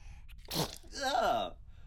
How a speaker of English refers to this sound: He sneezed out some gooey thing. Oh, his first slime production.